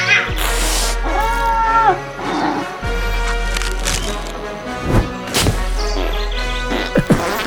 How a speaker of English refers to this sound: Little green-tailed lemur's about to be pounced on by that tree cat.